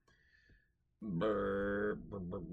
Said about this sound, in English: Burp.